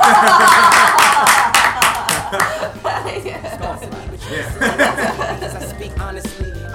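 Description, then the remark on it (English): A quick round of clapping by the hosts closing an interview, loud and dense at first, then thinning into scattered claps mixed with soft chuckling and murmured voices. “And we'll clap.”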